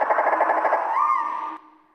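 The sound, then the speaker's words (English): Slowed-down nightingale song: a quick run of low, throbbing pulses gives way to a long, sliding whistle that sounds almost whale-like, then cuts off into a fading echo. “And here's the slowed down nightingale. It sounds quite a lot like a humpback whale.”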